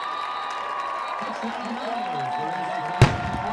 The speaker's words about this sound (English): There goes the cannon and the Owls. Another one for the Owls.